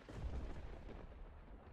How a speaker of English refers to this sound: You watch as this faint blue glow starts to build up beneath the cloudy form of this creature, and it continues to build and build and build until finally, at some point, the clouds burst out with a sound of thunder.